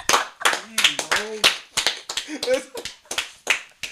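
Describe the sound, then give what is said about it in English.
Sharp, uneven hand claps ring out in quick bursts, mixed with loud excited voices and whoops from several people talking over them. “Gotta have the claps.”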